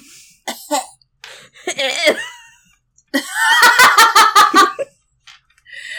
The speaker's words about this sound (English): As I cough up blood.